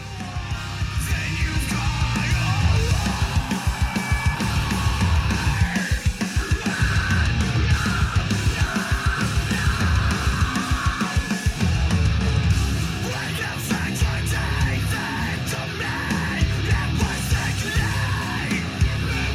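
A rock band's song plays loud and dense from start to finish, with steady pounding drums, thick distorted guitars and a shouted vocal.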